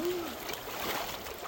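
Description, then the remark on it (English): Murky sewer water sloshes and splashes steadily for a moment as someone tends to it, a continuous wet churning at moderate volume, with a brief low tone sounding at the very start. “I'm just tending to all this sewer water.”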